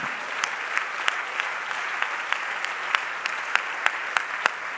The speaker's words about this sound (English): Come on, would you clap your hands in the room if you believe it right now?